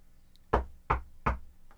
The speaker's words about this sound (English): Knock on wood.